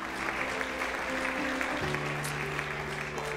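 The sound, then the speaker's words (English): A crowd claps steadily and densely throughout, a warm wash of many hands giving a hand clap of praise to the Lord, while sustained organ-like chords hold underneath and shift pitch partway through. “Can we just give the Lord a hand clap of praise for that?”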